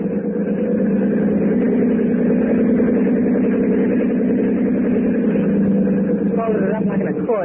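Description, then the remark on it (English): A motorboat engine drones steadily and loudly in a harbor, a continuous low throbbing hum that holds an even pitch and volume throughout. “She slammed a boat into the seawall.”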